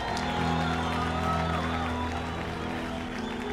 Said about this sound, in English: Give God a clap offering or praise somebody.